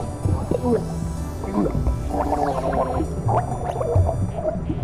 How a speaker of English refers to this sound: What's that, dear? I can't understand you with all that water in your mouth. Computer, end the drowning sequence. Let him breathe.